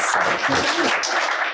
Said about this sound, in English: Shall we give a round of applause to our hosts and our panelists? Phenomenal audience.